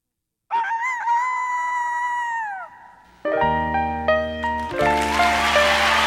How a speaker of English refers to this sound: Rooster says good morning with a cock-a-doodle-doo.